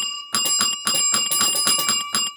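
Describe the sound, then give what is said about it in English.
A recording of two bells ringing together in a rapid, repeated trill, their slightly mismatched pitches clashing into a wavering, dissonant shimmer that makes a weird third note. Fairly loud, with no voices. “Wow, our bells kind of have a weird clash intonation, don't they?”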